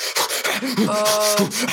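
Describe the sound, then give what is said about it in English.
A voice imitates the heavy, strained panting of a man running in a city park: rough, rapid breaths forced in and out, with a brief groaning, voiced tone in the middle, loud and continuous for under two seconds. “Not abnormal that he's running, but he is breathing like this.”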